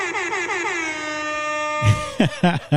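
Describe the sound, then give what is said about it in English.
A loud DJ air horn sound effect fires a quick stuttering burst of blasts, then holds one long blaring note before someone briefly starts talking. “I love the DJ air horn.”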